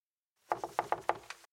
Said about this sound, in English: I closed the door and was heading back to the couch when there was more knocking.